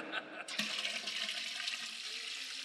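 Water is poured steadily into a container, filling it and pushing the air out, with a continuous broad hissing splash that starts abruptly and holds at a fairly loud, even level throughout.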